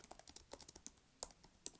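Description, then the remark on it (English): Rapid, uneven clicking of keys on a computer keyboard as a person types an essay, a steady flurry of keystrokes with a few sharper, louder taps, and no voices. “Do y'all hear that click-clacky of the keyboard? That's me typing.”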